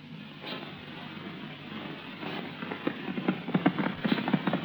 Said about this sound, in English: let's slow down to a gallop.